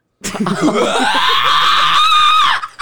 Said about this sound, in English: cut in now just screaming.